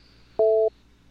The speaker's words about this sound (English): So just 1 second here as we make this magic happen. You can hear me dialing out here.